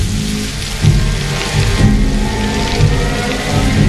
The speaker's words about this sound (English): he's been standing there in the middle of a pouring down typhoon